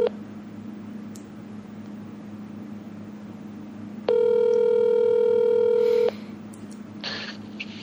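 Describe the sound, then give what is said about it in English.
A phone call rings out: a single steady electronic ring tone lasting about two seconds, fairly loud, over a low background hum, with a few faint clicks and no talking. “Maybe we should call from my phone.”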